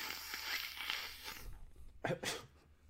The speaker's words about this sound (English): Oh, you even got white pepper. I had, like, some shit ready that's just, like, black pepper. It would have been terrible. I swear it was in the grinder, bro. Oh, I'm grinding it.